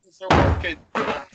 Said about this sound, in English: Oh, no. Oh, got a man down. She dropped a full bottle of water all over the floor. Well, it mops up pretty easy, doesn't it, now?